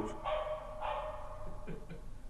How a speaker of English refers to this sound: Oh, well, a dog's putting his 2 cents worth in.